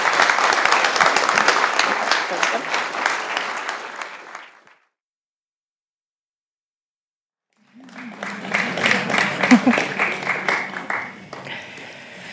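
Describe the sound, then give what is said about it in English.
An audience claps for participants of a music and memory singing group, people with early to mid-stage dementia and their caregivers, invited onto the stage: two sustained bursts of dense, loud applause separated by a few seconds of silence; the second burst is mixed with some crowd voices and fades slightly toward the end. “And I would like you to give them a large round of applause and invite them up onto the stage.”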